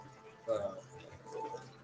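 A faint, steady trickle of water poured in a long pour and splashing onto coffee grounds, with a slightly louder burst partway through, against a low background hum.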